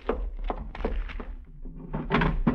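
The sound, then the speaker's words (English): A small package's box is shut and slipped into a desk drawer in a cabin: a run of soft wooden thumps and scraping knocks, ending in a firmer bump as the drawer closes. No one speaks. “Slip it into the desk drawer.”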